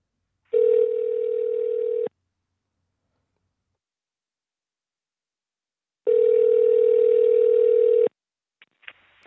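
A telephone call placed live on Voice in the Wilderness Internet Radio rings through the line: two long, steady, buzzy ring tones separated by several seconds of silence, followed by a few faint clicks as the call connects.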